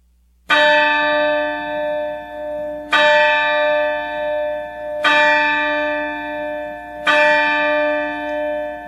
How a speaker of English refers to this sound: And the clock strikes midnight.